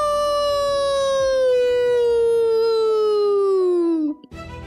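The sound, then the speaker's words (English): A single long wolf-like howl, voiced by a person as Akela's old call to the wolf council, holds a steady, mournful tone for about four seconds and then slides downward in pitch before breaking off abruptly. “And Akela lay down upon it and called the old call to the council.”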